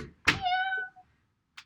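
A sharp thump as a cat rattles a door handle trying to open the door to come in, followed right away by a single drawn-out, fairly loud cat meow, then a brief soft scrape near the end.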